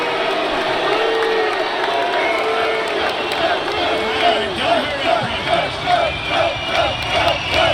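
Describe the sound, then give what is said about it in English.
A large crowd at a Trump rally cheers and shouts steadily, a dense roar of many voices with rhythmic chanting bursts pulsing through the second half, loud throughout. “Here's in depth at some Trump crowds.”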